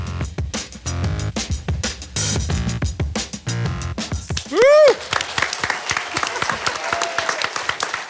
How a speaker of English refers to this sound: I'll wait till the rapturous applause ends.